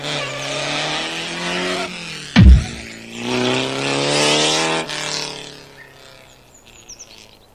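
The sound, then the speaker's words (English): An Oldsmobile's engine revs hard and accelerates to run someone over, its pitch climbing after a sharp heavy thud, then the roar cuts off and fades, leaving faint high chirps at the end. “We'll see how he lasts under the wheels.”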